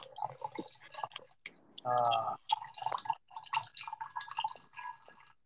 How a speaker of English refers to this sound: Is someone peeing? No, I was pouring out vodka.